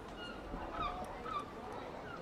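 A big door creaks open with two drawn-out, high squeals that rise and bend in pitch, over a steady background hiss.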